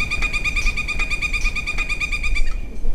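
A woodpecker calls in a fast, steady series of bright, ringing notes, clear, over a low outdoor rumble, in the woods next to Disney's Magic Kingdom in Florida; the calling fades out near the end.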